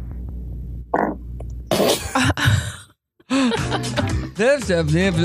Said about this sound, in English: Just a fart. That was a fart, right? It was.